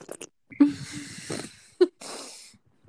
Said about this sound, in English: I'm literally drinking orange flavored water out of a straw. It sounds like you're doing a gnarly bong rip.